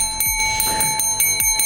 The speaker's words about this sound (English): You know, my favorite part of any bike is that... The bell. Bring, bring, bring, bring, bring. Move, bring, bring, bring. I love it, man.